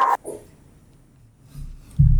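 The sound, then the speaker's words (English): A dog lets out a couple of short, sharp barks right at the start, followed by quiet and then a low rumbling noise near the end. “Dog says we're done.”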